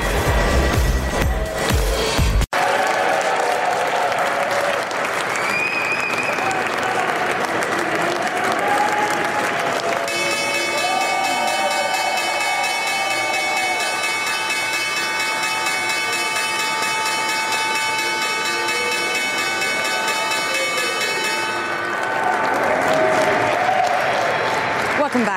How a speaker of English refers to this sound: That was the opening bell this morning at the New York Stock Exchange.